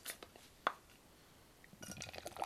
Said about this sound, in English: Oh, listen to that pause. You can tell even from the sound, listeners, can't you, that it's a fizzy beer. I think I poured that incredibly evenly as well.